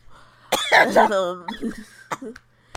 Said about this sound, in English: Cough, cough, people.